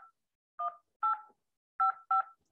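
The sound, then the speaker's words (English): Touch-tone phone keypad beeps as a meeting ID is entered to join a call: five short dual-pitched tones at uneven intervals, clear, with no voices. “I knew a guy in the military that if he heard this on your touchtone phone, enter your participant ID followed by pound.”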